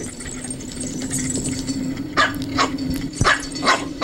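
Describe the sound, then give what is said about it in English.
A small Pomeranian dog barks in a quick series of sharp, high-pitched yaps, growing louder and more insistent toward the end over a steady low background hum. “This little Pomeranian thinks it's a fucking Rottweiler.”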